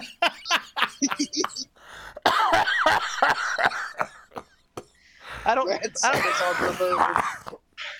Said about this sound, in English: Oh my god! Oh my god! Have you ever coughed so hard that you got dizzy?